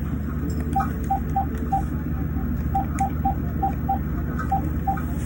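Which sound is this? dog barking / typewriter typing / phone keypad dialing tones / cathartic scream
phone keypad dialing tones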